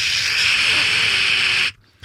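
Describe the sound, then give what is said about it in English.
A voice imitates radio static: a steady, bright hissing breath held for under two seconds, then cut off abruptly into near silence. “The radio report fades into static. Static, again, is just like that sound of...”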